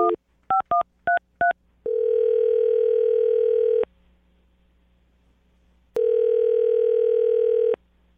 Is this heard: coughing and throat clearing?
no